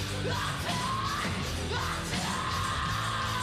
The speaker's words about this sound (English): We can't hit the note. I think it's got a scream.